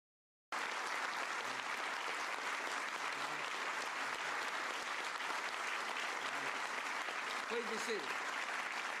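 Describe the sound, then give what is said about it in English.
Sustained audience applause, a dense wash of clapping hands from a large crowd that starts abruptly and stays steady and loud throughout, with faint voices murmuring underneath near the end. “Thanks for the applause.”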